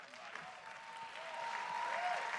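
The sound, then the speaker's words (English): Sustained applause from an audience, a dense wash of many hands clapping at once that holds steady and swells slightly louder toward the end, with no voices standing out. “Come on, somebody clap like prayer shifts the atmosphere.”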